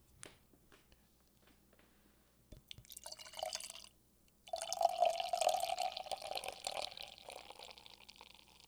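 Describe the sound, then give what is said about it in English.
Hop Mix Volume 1 beer from Hop Dogma Brewing Company is poured into a tulip glass: a brief splashing burst, a short pause, then a longer, steady gurgling pour with a ringing fill tone. No one speaks. “So I have this Tulip. a dog Hop Dogma Brewing Company tulip that I'm going to pour this sucker in.”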